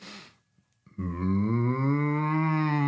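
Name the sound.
cow mooing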